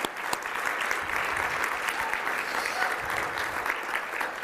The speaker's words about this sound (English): You know he's good when you have a whole group of junior hires up here leading us in worship. Amen? Yeah. You can clap.